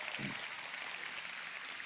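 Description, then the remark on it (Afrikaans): A church audience applauds to welcome viewers of its online service, many hands clapping in a dense, steady patter that holds at an even level throughout, with no voices rising above the noise. “Kerkfamilie, kan ek vra, kom ons gee ons aanlyn gehoor ons heel beste verwelkomende hande klap.”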